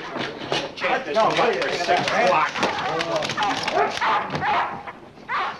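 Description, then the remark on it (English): A crowd of many different dogs, brought in by a group of men, barks and yips over one another in a dense, overlapping clamor, with whimpers mixed in, loud, while voices talk underneath the din. “a bunch of Hank's men show up with a ton of different dogs”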